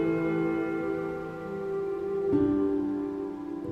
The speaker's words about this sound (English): Hear the mellow wedding bells. Golden bells, what a world of happiness their harmony foretells. Through the balmy air of night, how they ring out their delight.